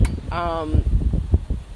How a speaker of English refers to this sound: Woo, it is windy, honey.